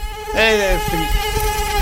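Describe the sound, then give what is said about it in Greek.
A voice imitates a mosquito's buzz, a steady high whine with a swooping rise and fall in pitch near the start. It is fairly loud, with no other talking. “Πάει και κάθεται το κουνούπι πάνω στο χέρι σου.”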